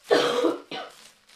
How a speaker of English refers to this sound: Excuse me, I'm going to cough.